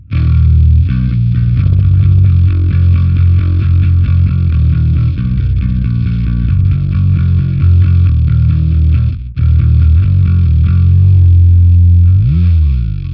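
Bass guitar played through a fuzz pedal: thick, distorted low notes played loudly and continuously, with a brief pause near the end before a final note that slides in pitch.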